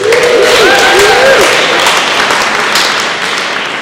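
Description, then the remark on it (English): At an Alcoholics Anonymous meeting, a crowd breaks into loud, steady applause for a speaker marking 36 years sober, dense clapping filling the whole stretch, with a few high cheering voices rising over it in the first second and a half. “And I don't say that for the applause.”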